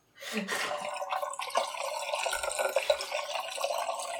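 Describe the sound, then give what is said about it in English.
Blix chemical is poured steadily into a film developing tank, making a continuous splashing gurgle that starts abruptly and carries on evenly for about four seconds. “Let's pour this Blix in.”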